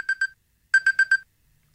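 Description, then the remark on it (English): The iPhone 'Signal' alarm tone: bright, identical electronic beeps at a steady high pitch, a pair followed by a pause, then a rapid run of four, and another starting at the end. “These are the ones that apparently give you sleep inertia. This one is Signal.”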